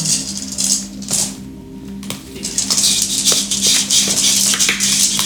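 Dice rattle and clatter across a hard tabletop in a dense burst of quick clicks, fairly loud, with a steady low hum in the background.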